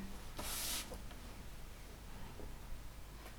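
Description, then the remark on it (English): A short, crisp burst of paper rustling and crinkling as a man folds up a sheet of paper, followed by a few faint soft scrapes and taps amid quiet. “Sorry, he's folding the paper up.”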